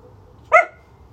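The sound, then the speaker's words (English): A single sharp bark from a female dog, loud, rising suddenly out of a quiet background and fading quickly, with no voices during it. “Yeah, this dog barks at all noises now.”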